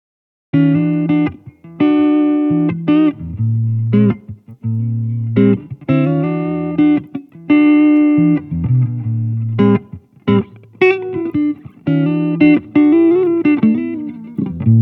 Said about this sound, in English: My final example is of some excellent guitar playing. Here's the dry recording.